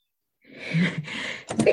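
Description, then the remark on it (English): A person takes a sharp, breathy intake of air and then lets out a sudden, forceful sneeze, fairly loud, with no talking around it. “I felt it coming. Bless you.”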